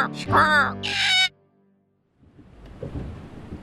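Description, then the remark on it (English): A parrot squawks loudly in a few raspy, harsh bursts, then falls silent before a low, rumbling wash of noise rises in the background. “But there might be a parrot.”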